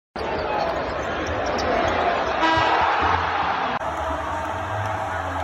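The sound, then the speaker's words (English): A loud, dense arena crowd at DFA roars continuously as a player sinks a half-court basketball shot into the net right before the halftime buzzer, the steady buzzer tone cutting through midway, the noise holding at full intensity as the roar swells around the shot. “Like, he had the craziest half court shot that sunk into the net right before the buzzer at half, and it was wild.”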